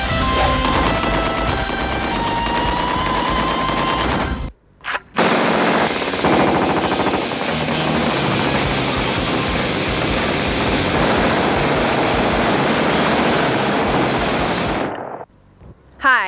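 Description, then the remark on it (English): Sustained bursts of rapid automatic gunfire from a Tec-9, a cheap small spray gun made in South Miami, rattle on loudly for about ten seconds, following a stretch of dense music with sustained tones, with a brief gap between. “And that there is a Tech 9, a little cheap ass spray gun made out of South Miami.”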